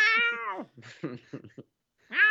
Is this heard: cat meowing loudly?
yes